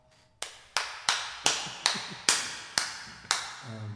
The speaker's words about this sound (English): At the applause. Oh, brother, this guy stinks! There's your applause.